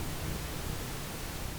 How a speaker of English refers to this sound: Only soft white noise came from the radio. Looks like we might have milked all we're going to get from these batteries,